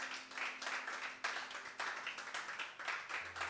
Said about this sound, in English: Give Jesus a hand clap.